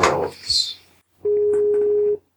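Brief rustling handling noise, then a single steady electronic telephone tone of an outgoing call, held evenly for about a second before cutting off cleanly, clear.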